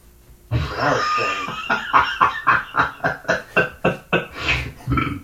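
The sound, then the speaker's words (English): A long, rough belch rolls out, then breaks into a rapid string of about nine croaky, pulsing burps in a steady rhythm, loud and guttural with no talking over it. “Stop burping, mate.”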